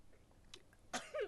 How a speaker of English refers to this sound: Pardon me. I sneezed, but yeah. I turned my microphone off.